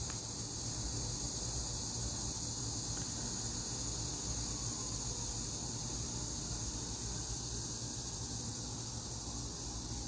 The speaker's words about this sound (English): I don't know if you can hear that. It's the cicadas in the trees. It's such a beautiful sound.